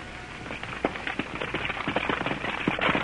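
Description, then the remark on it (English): Hooves clop in a loose, uneven rhythm over a steady gritty rumble of wagon wheels, growing slightly louder as the horse-drawn wagon, pulled by a horse named Toby, draws nearer, in a scene set in 1864 near Marietta, Ohio. No voices. “Stop that wagon. Whoa, boy.”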